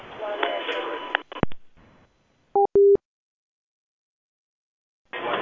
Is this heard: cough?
no